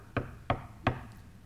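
Three firm knocks on a wooden door, evenly spaced about a third of a second apart, crisp, with quiet room tone between them, as two people knock at a man's door on a Sunday morning.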